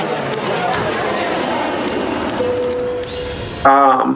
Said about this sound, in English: Pushes through crowd.